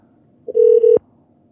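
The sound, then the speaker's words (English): A brief electronic telephone keypad tone as someone dials the IRS during a phone meeting: a short blip followed by a longer steady beep with a slight break, clear, ending in a click. No one speaks. “Let me get the IRS on the phone again, okay?”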